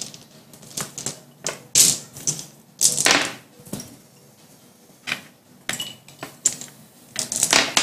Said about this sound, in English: Let's see. Seconds. Gotta find the right dice.